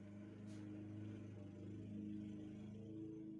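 A lawnmower engine drones steadily, a low buzzing hum with a rough pulsing texture and only slight swells in pitch, running on its own with no voices.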